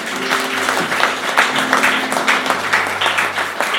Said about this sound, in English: Wasn't it such a lovely sermon? A round of applause.